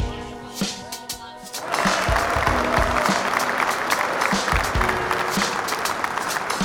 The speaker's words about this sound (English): Would you clap for me some more?